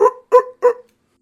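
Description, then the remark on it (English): A voice imitates a raptor call like the raptor sound from Jurassic Park, with three harsh, raspy barks in quick even succession, each short and loud with a gritty midrange tone, then silence. “You know the raptor sound from Jurassic Park?”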